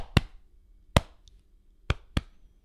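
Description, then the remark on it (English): Four sharp, loud hand claps from a record ring out over a low hum in an uneven rhythm, the last two closer together than the first pair. No one speaks. “In all instances, I am opposed to hand clapping.”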